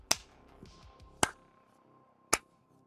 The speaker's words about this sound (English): Echoing across this catwalk, this abyss. That's what the lock sounds like, right? I like it.